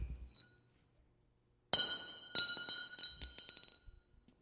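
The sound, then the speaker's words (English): A welded metal bar is dropped as a final test of its weld and bounces several times, each strike giving off a bright, sustained high-pitched ring that keeps sounding as the rapid, uneven clinks continue and slowly die away. “Now this is the final test to see if the bar is actually welded. And bounces.”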